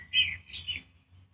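A cell phone's birdsong ringtone chirps a few quick, high tweets in a short burst, fairly soft, over a low background rumble with no one talking.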